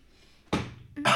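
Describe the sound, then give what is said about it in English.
Two harsh coughs from a person recovering from a cold, the first sharp and quickly fading, the second following about half a second later with a rougher, sustained burst. No talking. “Excuse me while I cough.”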